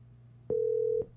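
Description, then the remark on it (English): A single steady electronic telephone tone sounds for about half a second as a phone call is placed to comedian James Adomian's mobile, clean and fairly loud against a low background hum, starting and stopping abruptly like a ringback or dialing beep. “Calling James, they do be in mobile.”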